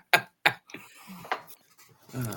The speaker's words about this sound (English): Oh, hold on. I got to get my shot glass.